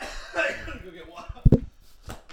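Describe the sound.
A short coughing fit: a couple of loud, harsh coughs in quick succession, with a few softer hacks after, over low murmuring voices.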